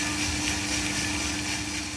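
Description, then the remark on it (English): A 2-kilo Coffee-Tech coffee roaster runs with a steady, even mechanical roar, a dense whooshing hiss layered over a low droning hum that holds constant throughout, with no cracks or voices. “This next recording is from a 2 kilo coffee tech roaster. It's a bit more noisy.”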